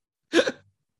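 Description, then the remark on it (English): A single quick sneeze, a sharp burst of breathy noise that fades out within a fraction of a second, with silence before and after and no talking. “yeah, God bless you, bro.”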